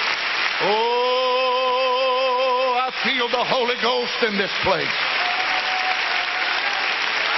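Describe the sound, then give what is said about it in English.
A church audience claps for Jesus in a dense, continuous wash of applause throughout, while a man's voice calls out over it, first with a long sustained cry, then quick speech. “Let's clap our hands and love Jesus.”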